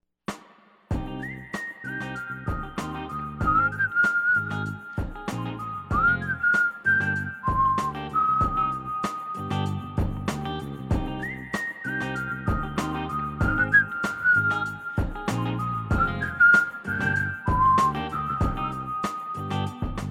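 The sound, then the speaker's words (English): A person whistles a bright melody along with a recorded song, the sustained whistled notes riding clearly above a steady rhythmic backing of drums and instruments throughout, with no talking. “I'm going to whistle along to the first whistle along section and then we'll be back.”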